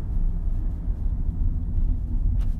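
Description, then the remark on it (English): A steady, low engine rumble fills a car's interior, a continuous muffled drone at moderate volume with no voices and only slight fluctuations throughout. “I can't wait to get out of this car with you.”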